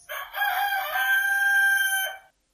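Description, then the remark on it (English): A chicken clock's sound: a single loud, clear rooster crow rising into a long drawn-out call that lasts about two seconds before cutting off. A brief cluck-like sound comes just before it. “And chicken clock.”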